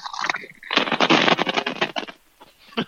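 A bag of Sun Chips crinkles loudly right up against the microphone, a dense crackling burst lasting about a second with a few scattered rustles before and after, no voices.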